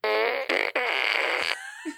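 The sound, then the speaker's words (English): A loud, buzzy novelty fart noise from a toy fart gun blares for about a second and a half, broken by two brief dropouts, then trails off into a faint tail. “Fart gun? Yeah, it doesn't have actual farts in it.”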